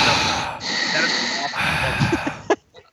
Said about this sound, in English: That is an awful sentence. Like, let's breathe. It's like, it's just like breathing. Like, why are you breathing?